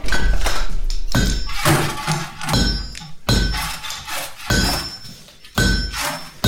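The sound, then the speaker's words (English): Loud hammer blows on metal, about eight strikes at an uneven pace, each leaving a bright ringing clang that hangs briefly before the next hit. “Sorry, didn't hear you walk up. All the hammering.”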